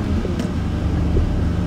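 A six-cylinder car engine runs loud, a dense low rumble with a slight rise in pitch around the middle, and no one speaking over it.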